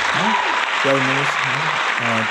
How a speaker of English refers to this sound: Again, definitely a shout-out to Simone Biles. She, the GOAT for that. Let me give her a round of applause.